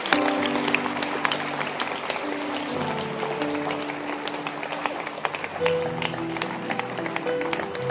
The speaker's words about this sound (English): Can you clap your hands and let's close the service?